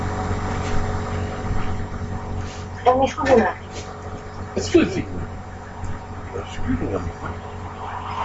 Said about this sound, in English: She didn't hear that car driving down the street.